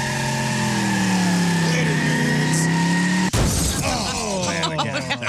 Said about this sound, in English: Oh, let me start the car. Up. Let me start the car. Get it up. Ah, come on. Man. Come on. I think I'm plugged. All right. There we go.